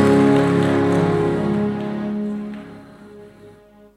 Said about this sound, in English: Clap your hands and say, I receive this madness.